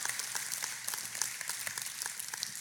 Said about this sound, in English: Come on, give her a hand clap. Woo!